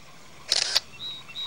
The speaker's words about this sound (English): Oh, I should snap a photo with my cell phone to remember it.